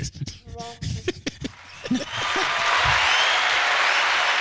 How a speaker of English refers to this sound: Ready? Give him a clap.